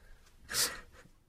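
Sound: sneeze or cough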